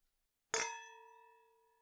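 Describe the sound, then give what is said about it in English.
A single bright clink of wine glasses touching in a toast before a first sip of Beaujolais, followed by a clear, high ringing tone that slowly fades. No voices are heard. “we pour the glasses, we let it sit, you know, for the couple minutes that we do our intro, and then we take our first official sip.”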